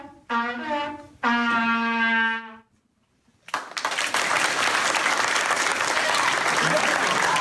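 After a couple of drawn-out vocal phrases and a brief pause, a crowd erupts into loud, dense standing ovation applause that roars steadily and unbroken to the end.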